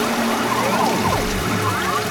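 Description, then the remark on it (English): A toilet flushes after its lever is pulled, with a steady, loud rush of swirling water, gurgling tones rising and falling throughout the short burst, without any talking. “My ring tingled with excitement as I prepared to flush the jacks.”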